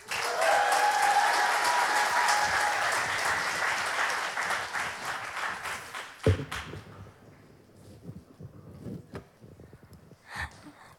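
crowd, audience cheering and applause

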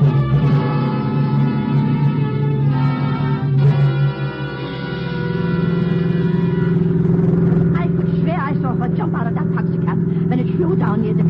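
vehicle, car driving fast

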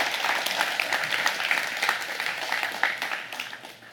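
crowd, audience applause

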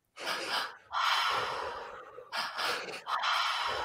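human body sound, deep rhythmic breathing exercise

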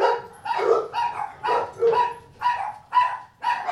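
animal, dogs barking

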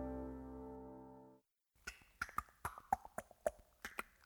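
human body sound, tongue clicking

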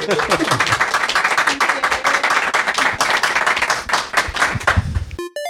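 crowd, audience round of applause

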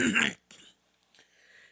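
human body sound, cough

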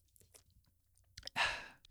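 food or drink, sipping a drink

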